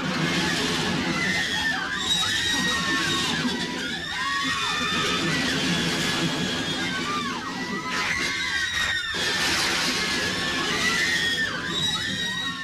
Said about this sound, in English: Screaming girls run on stage to rip Lester's clothes off again.